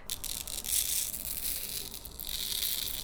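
A steady hiss and crinkle of fine manganese oxide powder being dumped onto a sheet of paper, with soft papery rustling throughout and no voices.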